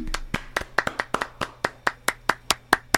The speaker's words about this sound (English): And also, six-month anniversary of Tanks and Tutties. Clap it up, clap it up.